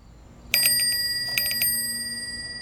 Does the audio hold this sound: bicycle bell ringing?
yes